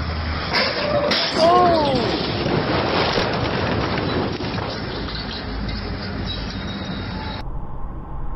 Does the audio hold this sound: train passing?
yes